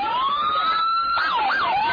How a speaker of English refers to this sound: To add to the pandemonium, they're running the sirens as loud as they possibly can.